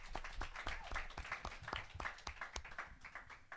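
A small audience claps steadily, with dense, irregular hand claps filling the whole stretch. The applause is fairly quiet and slightly distant, and there is no talking over it.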